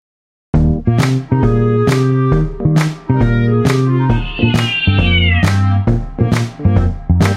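A loud, rhythmic run of cat meows, one after another roughly every half second, with a longer drawn-out meow midway, all over a steady low droning backing.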